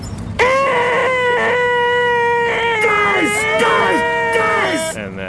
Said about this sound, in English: And every time Data runs into these dudes, he'll open his mouth and a very cloying, shrieky noise comes out of his mouth. Want to hear the most annoying sound in the world?